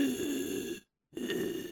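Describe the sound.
A voice imitates Darth Vader's raspy, mechanical respirator breathing: two harsh, hissing breaths, split by a brief silent pause, with no talking.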